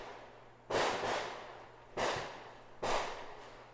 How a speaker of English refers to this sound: I can't tell if that's fireworks or gunshots